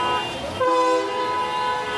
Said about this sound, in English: It sounds like a wedding going by. And unfortunately, well, nobody's getting married up here, but, you know, they're honking to show support or to tell us we suck.